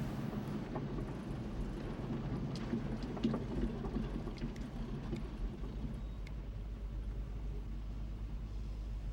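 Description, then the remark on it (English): A man drives his car steadily, its engine a low, continuous rumble with broad road and wind noise, plus a few faint clicks and knocks. No voices are heard. “He jumped into his car and there he is. Driving his car to provide a little bit of what he hoped would be additional verisimilitude to driving back there.”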